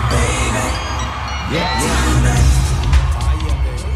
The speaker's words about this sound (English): And now, he's watching as the crowd at the L.A. Coliseum go off.